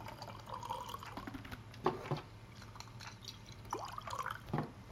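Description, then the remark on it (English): Jura whiskey, bought in Scotland, is poured into a glass in an office, with soft gurgles and a few small clinks and splashes over a quiet background hum, and no one speaking. “And I get to pour it.”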